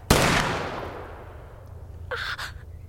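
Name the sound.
gunshot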